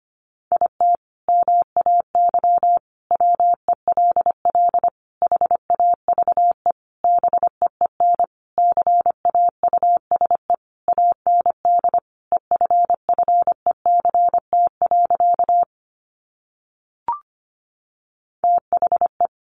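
Morse code sent at 25 words per minute: a single steady mid-pitched tone keyed into rapid dots and dashes. It runs continuously, breaks off briefly near the end, then resumes. No voices.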